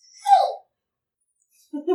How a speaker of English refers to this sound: That was adorable. It was just a yawn. It was like a kitten.